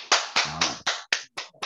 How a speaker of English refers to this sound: Y'all clap for her for real. Real talk.